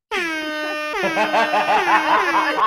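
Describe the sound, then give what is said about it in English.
A loud, sustained air horn blast with a bright, brassy harmonic tone, holding steady before wavering and pulsing in pitch toward the end, with no talking over it. “An air horn?”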